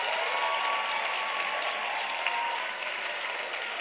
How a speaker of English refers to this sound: I want only art students to clap. Only art science students, you can rest. All art students should clap to show that you are impressed.